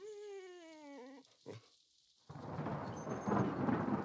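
A dog, Murphy, gives a drawn-out, wavering whine, then after a short lull a loud, sustained crash of thunder from a storm rolls in with a rushing, rain-like roar that carries to the end.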